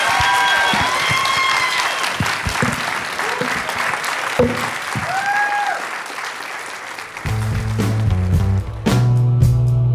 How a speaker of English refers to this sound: Let's give them one more applause for joining us, and thank you.